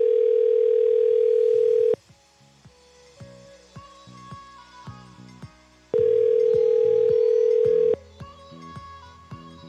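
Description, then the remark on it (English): A phone call ringing out: a loud, steady ringback tone sounds for about two seconds, pauses roughly four seconds, then repeats, with quieter tonal background sounds filling the gaps. “Come on, you're the first call you have to pick up.”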